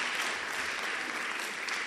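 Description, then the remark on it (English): A crowd applauds steadily for Pietermaritzburg, many hands clapping at once in a dense, even wash of sound that holds at a constant level for the whole stretch, with no voices standing out. “Clap for Pietermaritzburg, please. Clap.”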